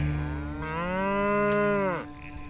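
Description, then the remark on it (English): A single long cow moo, loud, rising into a sustained harmonic bellow for over a second before dropping off, with faint outdoor background noise, from a cow being walked through muddy fields after milking. “And I tried to get the perfect audio capture of a moo.”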